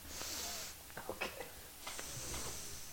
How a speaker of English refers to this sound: Okay, I'm sick and congested. This is a really cool thing. Vicks Vapor Rub has an inhaler. Oh, yeah. So I got to do a Vicks bump real quick.